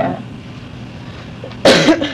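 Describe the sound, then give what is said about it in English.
After a stretch of quiet room tone, a person lets out one sharp, loud cough near the end, with a brief rough tail as it fades. “Excuse me, I keep coughing.”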